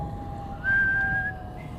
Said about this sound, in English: As Ichabod approached this fearful tree, he began to whistle.